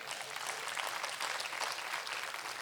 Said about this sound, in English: You can clap your hands for that.